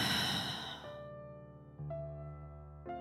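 A deep, audible exhale of breath out through the mouth, part of a guided breathing exercise, fades out over the first second, giving way to soft, sustained musical tones that swell gently twice.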